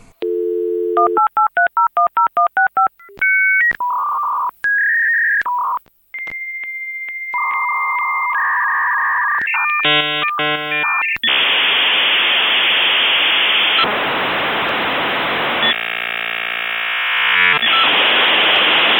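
A dial-up modem connecting: a dial tone and quick touch-tone digits, then warbling beeps and chirps giving way to loud hissing static bursts and screeching handshake tones, with no voices.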